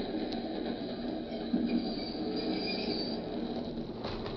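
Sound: train stopping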